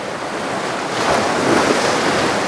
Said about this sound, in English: I think it's just these big waves, because I swear these waves were like this big before.